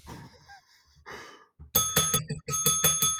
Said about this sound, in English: That bell means it's 5 o'clock somewhere